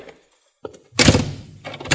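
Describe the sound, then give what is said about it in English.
A front door being pushed shut: a small knock, then a loud, full-bodied thud that rumbles and scrapes for about half a second before settling, with a brief rattle at the end. No one speaks. “I want to shut the front door, that's all.”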